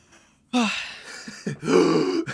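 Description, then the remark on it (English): A loud, sudden gasp of air, then a second, longer breathy intake with a harsh, voiced rasp, two strained bursts in quick succession with no words. “Huge gasp of air.”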